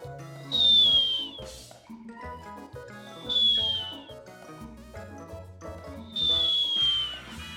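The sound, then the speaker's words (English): Cute, cartoonish snoring from a character settled down on the grass to sleep repeats three times in a slow, steady rhythm, each breath ending in a high, falling whistle, with soft tonal music playing underneath and no voices. “Adriel does snore, so I wonder if Lulu will snore.”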